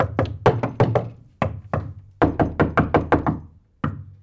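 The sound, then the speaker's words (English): Hollow wooden knocking from a wooden rowboat, like oars or the hull bumping, comes in uneven bursts of quick, fairly loud thuds with short pauses between clusters. No voices. “At another point, they take a turn in a wooden rowboat.”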